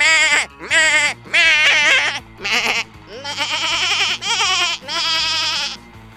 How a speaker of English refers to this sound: This is a tiny piano I invented where every key makes the sound of a screaming goat.